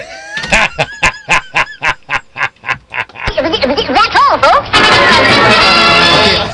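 An agitated duck quacks about a dozen times in a quick, steady rhythm, loud, before the calls dissolve into a dense, harsh burst of chaotic noise.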